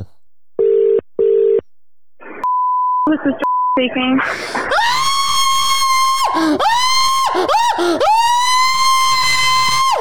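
Telephone dialing beeps and a ringing tone, on a call placed from a private number, give way to a person screaming loudly and continuously down the line, in several long, sustained bursts with short breaks between them.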